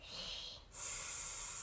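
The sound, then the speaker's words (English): A voice imitates a boa constrictor's hiss: a steady, airy hiss, a brief break, then a louder, brighter hiss held for almost a second. No words are spoken. “I hear a boa constrictor hissing in my ear.”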